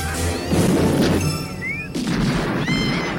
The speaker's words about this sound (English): Fucking explosion! Huge explosion, by the way. Humongous.